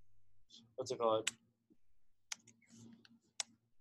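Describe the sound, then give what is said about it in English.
Scattered keyboard typing as a person changes a name: a handful of sharp key clicks at irregular intervals, with a brief stretch of someone talking quietly partway through. “Okay, just so everyone knows, all that typing was”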